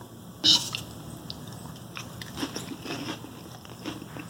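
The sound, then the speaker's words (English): A crisp crunch as someone bites into a cracker topped with canned sardines with olives, followed by several softer, irregular chewing crunches and squishy mouth sounds. No one speaks. “And also, it's a true bonus if you have the sardines with the bones in them, because then it's a bone. A crunchy.”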